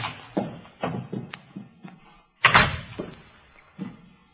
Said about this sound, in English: No sound inside. Door's open. Well, let's have a look.